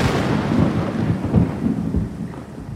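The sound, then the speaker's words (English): Deep, continuous thunder rumbles over a steady wash of heavy rain, the low roll swelling and easing without a break. No voices are heard. “What if there were storms? I like the sound of rain at night, but I hate thunder.”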